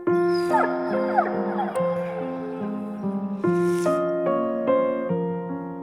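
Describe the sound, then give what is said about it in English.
A dog whimpers and lets out a few short yips and barks, its whining pitch rising and falling over a steady, sustained tonal backdrop, fairly loud throughout. “Except we're going to hear the characters say what I'm describing, and we're going to hear the sound design, and we're going to hear lots of dog noises and barks and things.”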